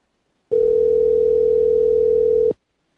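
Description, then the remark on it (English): A steady, loud telephone dial tone, heard while someone tries to add a caller to a call, holds one unbroken pitch for about two seconds, starting and stopping abruptly with silence on either side. “This is me trying to add that phone caller, by the way.”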